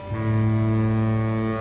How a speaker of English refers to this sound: The lighthouse foghorn, said Thomas. No way Annie and Clarabel slept through that.